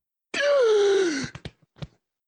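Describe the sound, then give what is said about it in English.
Several people waking up in bed at the same moment give a loud, drawn-out vocal gasp that slides down in pitch like a groan, followed by a few short, breathy catches of breath. “You wake up simultaneously with a gasp.”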